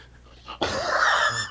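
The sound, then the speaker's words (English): One loud, heavy breath through the open mouth of a man who cannot breathe through his nose, a rough, airy rush lasting about a second, with a faint softer breath before it and no talking. “I'm breathing, man. I can't breathe out my nose.”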